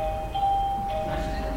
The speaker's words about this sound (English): And I rebuked Joshua today because I think he rang the bell 1 minute early.